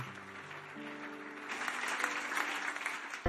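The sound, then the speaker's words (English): An audience at Keeper's House Chapel International, Madina Estate, Accra, claps their hands in a dense, continuous burst of applause that swells louder after the first second, with sustained tonal hum underneath early on and a sharp thump at the end. “Clap your hands.”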